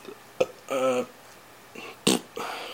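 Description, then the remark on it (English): A short, low, throaty burp rises out of quiet room tone, with a couple of sharp clicks and soft breathy sounds around it. It is moderately loud, and nobody speaks. “I guess I should cut out the burping and farting parts as well.”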